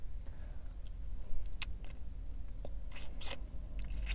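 Wet, crunchy chewing during a mukbang eaten in a car, with several sharp bites and mouth clicks, set over a steady low rumble. The eating sounds come in irregular bursts, with a cluster of louder crunches near the end.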